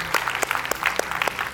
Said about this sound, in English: Would you applaud, stand to your feet as you do. Thank you guys so much.